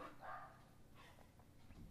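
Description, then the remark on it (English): A dog named Bosworth barks a couple of times in the background, the sharp yaps fairly quiet against a low hum, with no one speaking. “So as you sit here and continue listening and hear Bosworth bark in the background”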